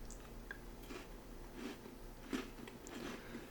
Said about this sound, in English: What are you munching on over there? … keeps shoving stuff into his mouth.